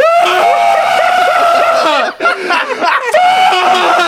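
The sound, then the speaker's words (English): A person voices a loud, drawn-out shrieking scream like a wounded monster, for a game character whose other arm has just been ripped off, harmonic and strained, breaking off briefly midway before resuming at full volume. No other speech is present. “This time he gets to scream and it's just”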